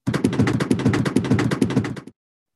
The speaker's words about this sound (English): Do you think we have any reviews this week? I'm giving you a $2 drum roll here.